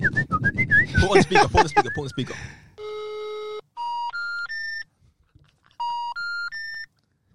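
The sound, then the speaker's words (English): A basic mobile phone call made with credit, on speaker, fails to connect: a flat electronic tone, then three rising beeps, a pause, and the same three-beep sequence again, after a brief burst of overlapping voices. “I'm calling you right now. It won't work.”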